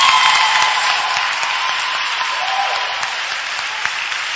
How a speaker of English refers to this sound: And when we are clapping our hands, we all clap our hands.